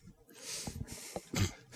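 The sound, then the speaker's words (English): A person fakes a sneeze: a few breathy, hissing inhales build up, then a sharp, noisy burst of air, followed by a short trailing breath. No talking. “I fake sneeze to cast this spell.”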